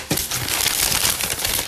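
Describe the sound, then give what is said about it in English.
Loud crinkling and crunching of a sheet of paper used for a tally being crumpled, a continuous rustle of sharp crackles lasting under two seconds with no voices. “That is the paper that we took for our tally last week.”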